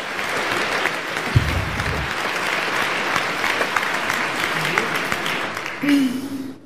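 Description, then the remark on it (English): A crowd gives a round of applause for the art department, a dense, even patter of many hands clapping that holds at a strong level throughout, with a few whoops and cheers rising near the end. “But please, an extra applause, round of applause for the art department.”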